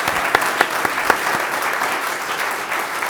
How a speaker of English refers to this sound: Yeah, let's give her another round of applause. That was amazing.